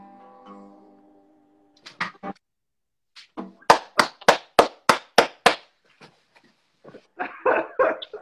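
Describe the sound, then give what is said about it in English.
A female dog lets out a short, high whine, then a loud burst of sharp barks in a quick rhythmic run, followed by a few scattered yelps and grumbling barks. No one speaks. “I don't know if you can hear it, but the dog got so pissed halfway through that.”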